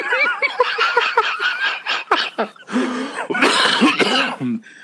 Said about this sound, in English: By the way, I'm recovering from this fucking cough that I've had since like last year.